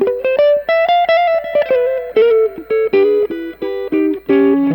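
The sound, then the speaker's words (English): An electric guitar with a P90 pickup, played through the push channel of an amp with the gain low, plays a short melodic phrase of sustained, harmonically rich notes with a gritty, mildly overdriven and compressed tone, fairly loud, with brief gaps between notes and no voices. “And that's on the push one, so there's kind of a bit more compression.”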